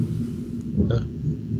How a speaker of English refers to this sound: I don't know if you just got to everybody got to hear that thunder, but I have a thunderstorm going on outside. It really adds to the ambiance.